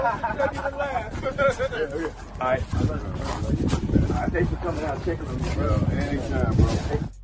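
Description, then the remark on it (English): Wind buffets a phone microphone in rough, windy weather, producing a loud, continuous low rumble with gusty surges, while a voice talks over it throughout. “I could hear the weather coming through the phone. It's just windy.”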